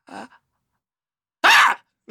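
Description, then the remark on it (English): A person imitates a sneeze with one sharp, loud yelping burst after a brief soft intake of breath, followed by silence. “This is a Michelle Visage sneeze.”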